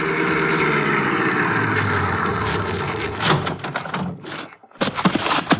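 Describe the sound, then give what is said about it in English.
A car engine idles with a steady rumble for several seconds after pulling up at a house, then a few sharp clunks and knocks break in as the idle continues unevenly. “You mind if I wait in the car?”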